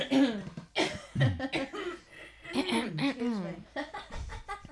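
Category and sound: human body sound, throat clearing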